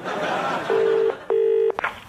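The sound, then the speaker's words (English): A telephone ringback tone sounds through an earpiece as a double burst of two steady, buzzy pulses, fairly loud over a faint hiss of background noise. “It's ringing.”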